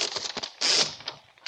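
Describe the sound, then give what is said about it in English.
A few quick clicks and rattles, then a short rasping whirr as paper is pulled out of a typewriter in the old-time radio drama Box 13, fairly loud, with no voices. “Take it out of the typewriter.”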